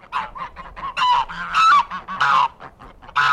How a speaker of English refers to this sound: Outside the city, ecologist Manuel Guerra lives away from the pollution, on a farm with a flock of noisy geese and some rescued deer.